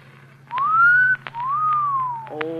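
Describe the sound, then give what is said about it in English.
A clear wolf whistle: a long rising note followed by a second note that swoops up and then glides down, over a low steady hum. “Well, then you should have made the whistle shorter, like this.”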